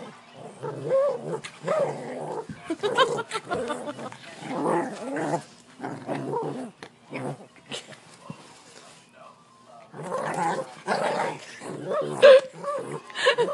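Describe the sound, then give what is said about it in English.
A male puppy barks, yips and whimpers in a steady run of sharp, excited bursts. It pauses briefly about two-thirds of the way through, then starts up again. “Somebody tell us what to do with this puppy dog.”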